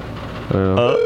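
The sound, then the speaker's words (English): A telephone ringback tone sounds on an outgoing call: a steady electronic buzz starts about halfway through, and a higher tone joins it near the end. It is clear, with faint background murmur before it. “There's the ring.”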